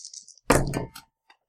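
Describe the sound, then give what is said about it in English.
Dice tumble onto a hard surface with a sharp clatter, a quick run of rattling clicks, then a couple of faint final taps as they settle. No one speaks. “And then you roll your dice.”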